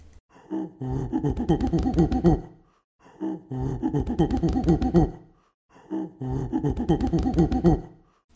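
Three bursts of monkey calls, each a couple of seconds of rapid, rising and falling hoots and chatter, separated by short silences and fairly loud throughout.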